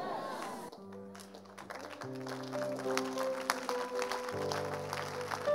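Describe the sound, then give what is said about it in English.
An audience claps in a steady patter of many hands, mixed with sustained keyboard or organ chords that hold and shift underneath at moderate loudness. “Stop clapping.”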